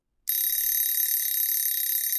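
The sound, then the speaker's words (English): A pizza oven timer goes off with a sudden, loud, continuous high-pitched ring that starts abruptly after a brief silence and holds steady, with no other sounds around it. “The timer went off.”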